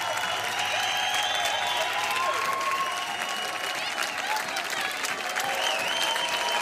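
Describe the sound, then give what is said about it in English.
An audience claps steadily and continuously for several seconds, a dense, even wash of many hands with faint crowd murmur and a few higher voices mixed in. “They're clapping.”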